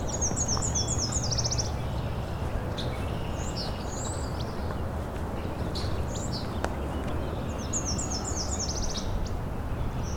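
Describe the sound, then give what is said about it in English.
A northern parula, right in front of the recordist, sings its high, buzzy rising trill ending in a zeet twice, near the start and again near the end, over a steady broad rushing background with a few other faint bird chips between. “Okay, there's a northern perula here. There we go again.”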